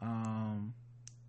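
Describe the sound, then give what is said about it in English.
Two short, sharp computer mouse clicks: the first overlapping a low, sustained voiced hum, the second alone in near-silence about a second later, as someone clicks on an online article to check for an update. “Yeah, I'm clicking on it now and I still don't see anything.”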